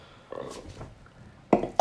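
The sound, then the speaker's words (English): A low, croaky stomach gurgle rumbles for about half a second, burp-like in tone, followed after a pause by two sharp, louder bursts of noise. “That wasn't a burp. That was just a gargle from the depths of hell in my stomach.”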